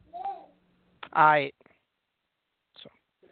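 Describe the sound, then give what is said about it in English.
A toddler boy babbles close to the microphone in short bursts, one longer harmonic-rich vocal run in the middle, with brief quiet gaps and small sounds between utterances. “you're going to make him talk on the microphone and make him tell you four times no before you leave him alone”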